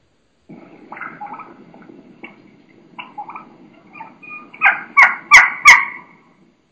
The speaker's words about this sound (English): And you're going to hear a real, in my mind, young hen. And she's going to have a real high pitch. You know, she's going to be doing quite a bit of keeking, you know, some high pitch sounds, and it's just awesome.